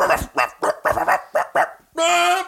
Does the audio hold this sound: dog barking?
yes